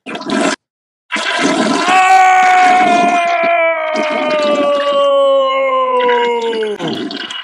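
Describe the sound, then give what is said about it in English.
A toilet flushes loudly, a rushing whoosh of water with a long, strained whine that slowly drops in pitch before trailing off after about six seconds. “Oh! He flushed the haters.”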